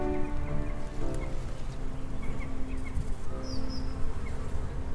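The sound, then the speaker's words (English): A steady, low droning buzz of bees in a garden hums continuously without pause, with a couple of faint, brief bird chirps rising above it partway through. “The garden was so quiet that Phoebe heard the buzzing of bees again.”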